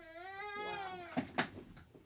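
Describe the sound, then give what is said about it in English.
A baby boy fusses and cries: one long, wavering, high-pitched wail that slowly falls in pitch, followed by a couple of sharp, louder whimpers and a softer trailing fuss. “Quit doing that, baby. You're being a little loud.”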